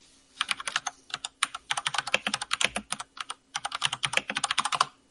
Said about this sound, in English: Damn, fucking typing loud and fast. Thanks for muting yourself, dude, by the way.